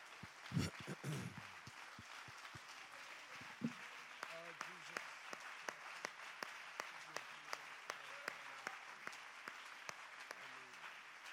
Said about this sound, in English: Let's give the Lord one more good hand clap of praise.